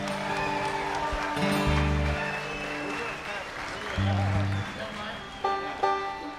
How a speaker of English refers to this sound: So once again, ladies and gentlemen, would you give them a nice round of applause?